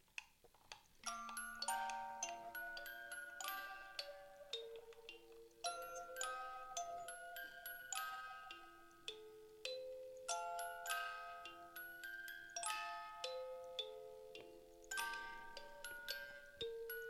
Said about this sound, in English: It's definitely yellowed over the year, but it's a music box.